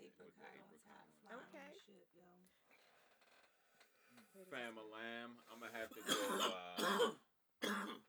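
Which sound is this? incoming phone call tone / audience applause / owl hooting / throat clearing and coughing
throat clearing and coughing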